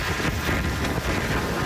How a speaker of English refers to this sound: That is the ugly sound of a powerful storm as Fiona slammed into Canada with whistling winds and roaring waters.